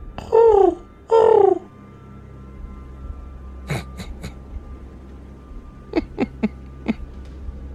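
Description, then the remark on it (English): A person imitates a wood pigeon with two loud, breathy hooting coos that slide downward in pitch, followed by several sharp, faint clicks and taps over a low background hum. “Who did the wood pigeon sound?”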